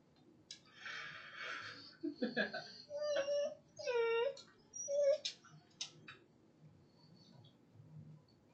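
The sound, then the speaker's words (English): Percy the dog, smelling chicken and wanting a piece, whimpers in a string of short, high-pitched whines that rise and fall over several seconds, after some breathy snuffling at the start, then goes quiet. “Percy likes it. Percy thinks it smells good. Sniff, sniff, sniff. I want a piece, Mom.”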